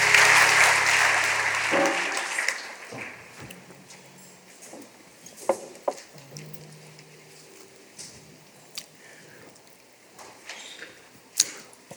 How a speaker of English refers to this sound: Come put your hands together and give the Lord a hand clap of praise on today.